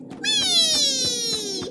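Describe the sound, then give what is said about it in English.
A single long, drawn-out cat meow that slowly falls in pitch, loud, with soft rhythmic thumps like footsteps beneath it. “Ooh, kitty!”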